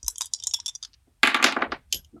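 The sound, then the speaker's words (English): Dice clatter in a quick run of hard clicks across a tabletop, then a louder rattling tumble, followed by a couple of faint, scattered knocks as one drops off the table. One die lands on a 6 and another rolls off the table. “6 and then 1 rolled off of the table.”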